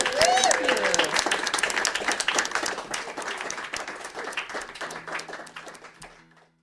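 An audience at a live Saturday's Child broadcast at the Monroe County History Center breaks into a round of applause for the musical guest, dense rapid clapping with a few whoops at the start, gradually thinning and fading out over about six seconds.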